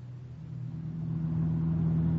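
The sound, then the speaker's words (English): A car engine hums low and steady, then swells louder as the car picks up speed and pulls away in Leopoldville, a droning rumble with no voices. “We pile into his car and head out for the Bergerot.”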